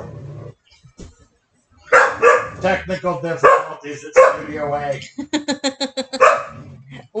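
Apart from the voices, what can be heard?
dog barking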